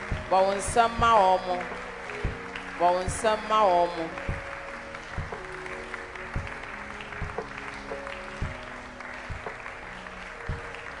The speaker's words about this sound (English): Oh, keep clapping.